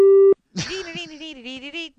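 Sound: telephone ringing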